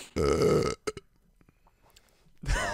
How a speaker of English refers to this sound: oh man, the burps. Problem with bubbly. The burps.